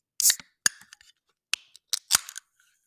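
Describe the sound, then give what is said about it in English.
A metal can of Liquid sparkling water is cracked open: a few sharp clicks and snaps of the tab, each followed by a short bright hiss of escaping fizz, with no talking. “So when you open the can, you see the bubbles kind of forming on the tab that's been popped.”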